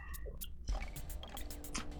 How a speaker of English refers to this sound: Slurping sounds. I know, right? That was some Darth Blasphemous Lipton tea ASMR.